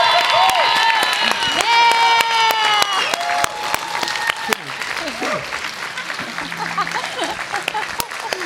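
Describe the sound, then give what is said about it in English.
A church audience bursts into loud, sustained applause with whoops and high cheering voices at the announcement of the church's new name, Echo Church, formerly South Bay Church; dense clapping continues throughout while the shouts gradually thin out toward the end. “Come on, make some noise.”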